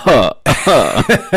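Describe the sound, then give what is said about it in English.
A run of four loud, raspy coughs in quick succession from someone with a sore throat, each harsh and throaty, with brief pauses between them. “Oh, your cough button didn't work either, by the way.”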